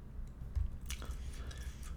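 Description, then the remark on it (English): Soft, wet chewing of gum, with a few squishy smacks and clicks over about two seconds and no talking. “I'm chewing gum while I do this because this is a very professional podcast.”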